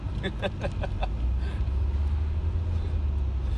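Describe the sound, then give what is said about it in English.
Steady low rumble of a car cabin on the move, a constant road drone filling the whole stretch, with a brief indistinct voice near the start. “I'm driving along in the car, you can hear that.”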